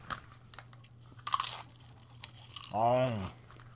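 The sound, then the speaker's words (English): Crisp, crackly crunches from a mouthful of twelve potato chips, in a few quick bursts, followed by a brief voiced sound near the end. “Are you muting yourself to crunch chips?”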